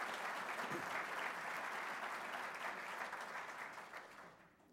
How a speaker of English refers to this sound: So if we could give them a great round of applause, I would appreciate it.